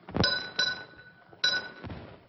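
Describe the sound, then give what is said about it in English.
A doorbell rings with bright metallic clangs, two quick strikes, a brief pause, then two more, each leaving a shimmering, ringing tail. No voices. “Up beside a doorbell rings.”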